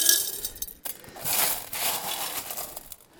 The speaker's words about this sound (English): These rocks right here. These are the most important ones. These are the rocks we're going to put back in here. This is real glass here, so you got to be careful.